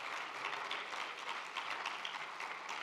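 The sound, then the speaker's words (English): A church audience claps for a pastor being introduced, in a dense, steady wash of applause that holds at an even, moderate loudness for the full few seconds, with no clear voices over it. “Yeah, give him a real clap.”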